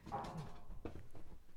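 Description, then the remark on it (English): A dog whines in a thin, drawn-out tone, followed by a few soft, muffled scuffs and yips. It is fairly quiet, with no one talking. “This is Poppy's new thing. So our dog Poppy, our dogs do not like coming downstairs.”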